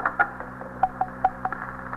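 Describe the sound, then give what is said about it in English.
A telephone being dialed: a quick run of short, evenly spaced clicks and brief tonal blips, clear, over a faint steady hum with no one talking. “Matt, is this phone to T.S.?”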